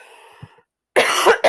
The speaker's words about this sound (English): I suspect that I have a cannabis cough.